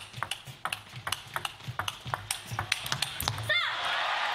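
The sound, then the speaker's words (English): A fast table tennis rally in a match between an American champion and the Chinese team: sharp, light clicks of the ball off paddles and table in a quick, uneven rhythm, ending with a brief rising squeak over steady crowd-like noise. “She was incredible at the sport of table tennis.”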